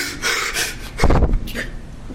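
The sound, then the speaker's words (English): Kyle Rittenhouse gasps for air between sobs as he testifies in his own defense on the witness stand at his murder trial, with several ragged, breathy inhalations; the loudest, most strained gasp comes midway, followed by shakier, quieter breaths. “Rittenhouse gasped for air when he testified in his own defense at the trial the whole nation is watching.”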